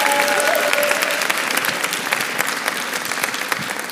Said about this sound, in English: And so can we give these three friends of ours a round of applause?